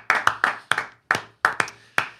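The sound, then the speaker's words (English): About eight sharp hand claps from an investor applauding a product pitch, in a slightly uneven rhythm with a brief pause midway; each clap is crisp and fairly loud, heard alone without any talking. “The price point's great, and I'm proud to call myself both a customer and an investor, and I'd like to give you a clap.”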